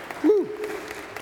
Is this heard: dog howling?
no